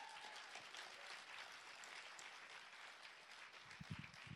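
A crowd claps steadily as a speaker is invited up to share their story, a dense, sustained wash of applause, with a few brief low thumps near the end as it continues.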